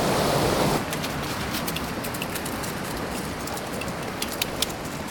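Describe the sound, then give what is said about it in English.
A waterfall on an easy, accessible hiking trail: a steady, full roar of rushing water fills the whole stretch, slightly louder at first, with scattered splashy patters flickering over the constant wash. No one speaks. “Now, aside from Panther Creek Falls, this is one of the nicest waterfalls I've been to.”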